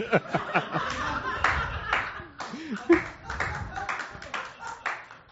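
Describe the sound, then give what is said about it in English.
An audience applauds in a dense, steady patter of many hands clapping at once, with scattered laughter and murmuring voices mixed in throughout. “They're clapping. They are clapping, but you know how I feel about, like, you know...”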